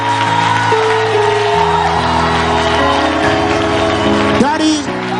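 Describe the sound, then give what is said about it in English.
A crowd claps and cheers loudly and continuously, with whoops and shouts rising over sustained tones in the background, the noisy applause filling the whole stretch. “You can't clap hands for that?”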